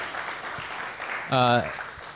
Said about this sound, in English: Really good, thank you guys. Round of applause for these guys on really good presentation.